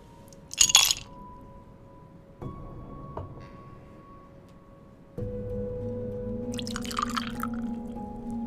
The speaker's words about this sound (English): What type of spirit are you in the mood for? Ah, what a fine choice. Would you like that poured over ice?